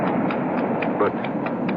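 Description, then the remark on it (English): Horse hooves galloping on sand along a shoreline, a steady run of soft, rhythmic thuds over a constant rushing, wind-like background. No one speaks. “At last, I'm on the sand. My horse feels the excitement as I do. I feel him extend himself.”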